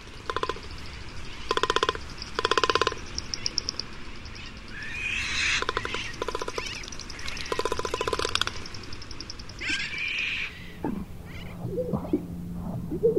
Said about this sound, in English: Inflated throat sacs beaten and rattled with a long beak. Magnificent frigate bird.